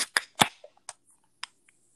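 A drink can being opened: two sharp metallic cracks from the tab, followed by several fainter clicks and ticks scattered over the next second and a half, with no voices.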